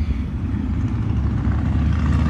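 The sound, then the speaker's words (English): A steady, heavy rumble of three motorcycle engines rolling by, low and throaty, holding at a constant loud level throughout with no voices. “There are just three more motorcycles.”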